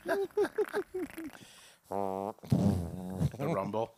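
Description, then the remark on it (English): A man makes a string of short voiced bursts, then a long buzzy raspberry and a rougher sputtering blast, imitating fart sounds with his mouth, loud. “Imaginary fart sounds.”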